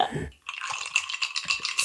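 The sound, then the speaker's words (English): Rapid, bright clicking of fingernails tapping, a dense irregular patter of crisp little ticks that runs on steadily after a brief pause, with no voice over it. “Like if you heard my nails just tapping like that, you know, like, so you pay attention to that.”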